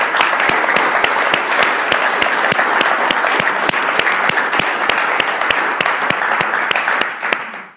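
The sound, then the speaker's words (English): A crowd applauds steadily for about seven seconds, a dense, loud wash of clapping with a few sharp, evenly spaced claps standing out, before it quickly fades away at the end. “All right, round of applause for him.”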